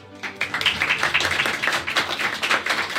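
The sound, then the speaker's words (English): A live audience in San Antonio applauds steadily for a few seconds as Chairman Dustin Burroughs and Annie Spillman are welcomed: a dense wash of overlapping hand claps with bright, crackly texture and no voices. “For our listeners, as you could tell by that applause, this is our first podcast episode to be recorded in front of a live audience.”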